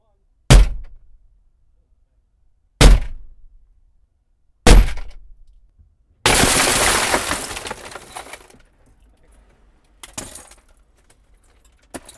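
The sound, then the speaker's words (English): Three heavy metallic blows ring out a couple of seconds apart, then a loud crash of shattering glass that crumbles away, followed by a few lighter knocks as someone smashes up a car, recorded by a recorder left inside the car. Nobody speaks. “All right, well, let's get some smashing, shall we?”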